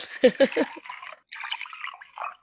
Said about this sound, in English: I'll pour the tea in honour of Kevin.